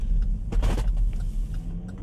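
A car brakes hard at a stoplight as another car pulls out in front, heard from inside as a steady low road rumble with a brief harsh burst of noise partway through; no one speaks.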